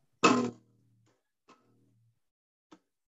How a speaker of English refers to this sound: Sporadic banjoing, it sounds like.